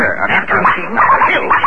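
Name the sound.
dog barking and snarling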